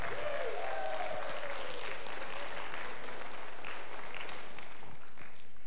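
An audience stands and claps together for absent members who are watching remotely, in sustained, dense applause lasting several seconds, with a brief whistle-like cheer near the start before the clapping gradually thins out.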